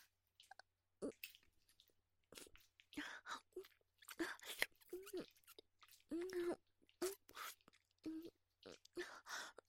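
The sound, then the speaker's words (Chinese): Wet chewing sounds, irregular squishy mouth noises and smacking bursts repeating throughout, as someone chews Chinese herbal medicine in their mouth to prepare it for rubbing on a donkey. No clear talking. “你问我嘴里含着什么呀？我在咀嚼草药呢。”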